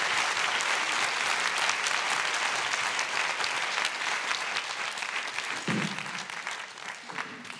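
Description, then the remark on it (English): A sizable audience welcomes a writer to the stage with sustained, dense applause, many hands clapping steadily and loudly throughout. It tapers slightly toward the end with a brief murmur of voices. “Please welcome to the stage, with your revolutionary, orgiastic, best applause”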